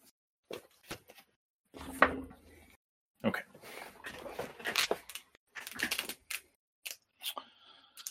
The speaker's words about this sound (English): Somebody's rolling some dice.